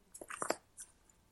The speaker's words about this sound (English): So let me shuffle up the yellow cards, and let's just see. It's got to be this one.